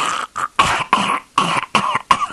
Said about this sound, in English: Excuse me, I got a cough.